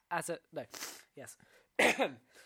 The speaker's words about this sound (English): Do you need to cough?